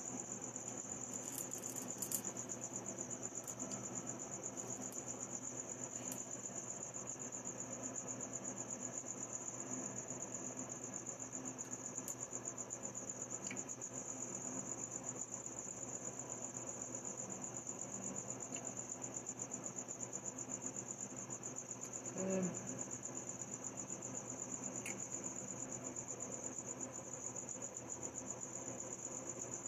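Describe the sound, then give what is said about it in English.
A dense chorus of crickets chirps in a steady, unbroken high-pitched trill for the whole stretch, over a faint low background hum, with no voices. “This is an ASMR, by the way, of crickets.”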